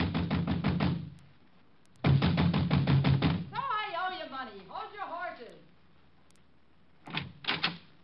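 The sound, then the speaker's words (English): Loud, rapid knocking pounds on a door in the village in two long bursts, like frantic drumming, then a voice calls out briefly before a few more quick knocks. “I was soon banging on a door there like a drummer playing ….”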